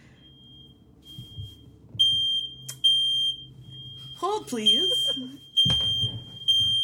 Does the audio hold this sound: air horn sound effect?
no